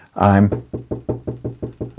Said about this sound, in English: And he says, but I'm knocking. That's a positive thing. I'm knocking. I haven't gone away.